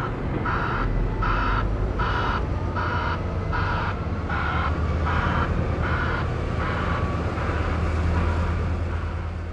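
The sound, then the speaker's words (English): At a mine, towering electric mining shovels scoop blasted rock into the beds of waiting haul trucks: a deep, constant mechanical rumble fills the scene while a reversing alarm beeps steadily about twice a second in the background. No one speaks. “Then towering electric shovels swoop and scoop the shot rock into the beds of waiting haul trucks in a slow-motion mechanical waltz.”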